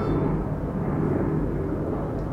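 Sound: airplane flying overhead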